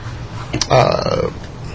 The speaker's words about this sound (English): Sorry, I'm burping.